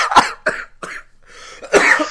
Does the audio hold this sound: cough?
yes